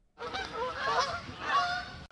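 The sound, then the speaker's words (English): Canada geese honking in a loud, harsh cluster, two overlapping bursts of nasal calls from several birds, lasting about two seconds with no talking. “How's it going up there, geese?”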